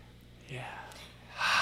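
Breathy exhalations into the microphone: a soft airy breath, then a louder, harsher rush of air at the end, with no words spoken.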